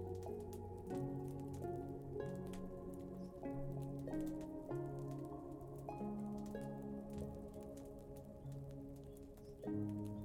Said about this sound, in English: The warmth of the fireplace and the soothing sound of the rain continue to wash over you, and you feel completely at ease.